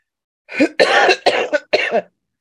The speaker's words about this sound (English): The cough is just a result of all the back snot. It's in your, you know, in your throat.